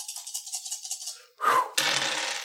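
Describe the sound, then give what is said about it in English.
Rapid rattling as a pile of dice is shaken in a rhythmic burst, then a loud clattering spill of many dice tumbling across a surface, with no voices. “Just a pile of dice. My dice pile.”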